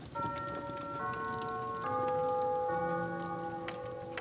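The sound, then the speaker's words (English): A clock chimes the quarter hour at a quarter past one at night: four ringing bell notes struck in an even, stately sequence, each tone sustaining into the next, over a steady patter of rain-like background noise. “The next 15 minutes seemed to stretch so long that more than once he was convinced he must have dozed off and missed the clock chime.”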